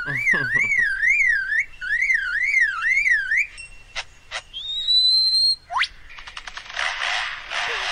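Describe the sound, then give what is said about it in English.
A bird imitates a car alarm, looping a rapid warbling siren for a few seconds, then breaking into sharp clicks, rising whistles and noisy bursts mimicking a camera shutter, a motor-drive shutter and a chainsaw, loud with no talking. “And as you're going to hear, it even mimics a camera shutter, a shutter with a motor drive, a car alarm, and then, as you said, a chainsaw.”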